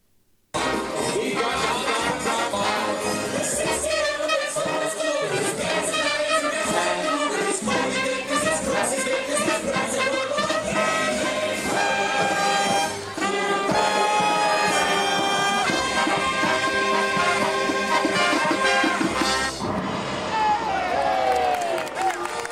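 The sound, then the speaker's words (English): An Aladdin parade, the caravan at Hollywood Studios, in full swing: loud, bright music with voices plays continuously while a crowd claps and cheers along, the sound shifting briefly near the end before carrying on. “Boom, they got a parade, the caravan in Hollywood Studios, and it sounded a little like this.”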